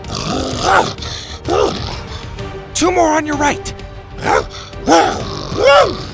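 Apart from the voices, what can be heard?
creature growling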